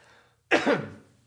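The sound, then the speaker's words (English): A single harsh cough bursts out after a brief quiet moment as the person slowly wheels away, with a second rasping push before it trails off, and no talking around it. “And I'm going to just slowly wheel away as I cough for a second.”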